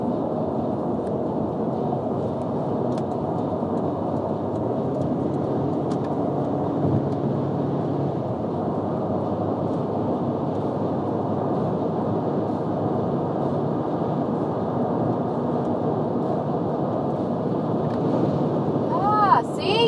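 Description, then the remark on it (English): Strong wind buffets a small car being driven in its lane, in a loud, continuous low roar that surges and rumbles for the whole stretch, with muffled voices faintly underneath. “But like this wind is blowing my car away. I feel it.”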